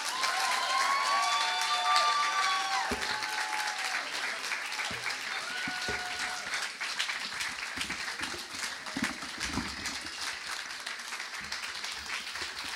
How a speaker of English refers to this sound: Give it up for the …. Don't stop clapping.